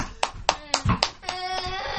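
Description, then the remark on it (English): Brief applause for the cast of a Noah and the ark play: sharp hand claps in a steady, quick rhythm of roughly four per second, with a sustained tonal, voice-like sound rising under the later claps. “Round of applause.”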